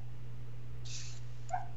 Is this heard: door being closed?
no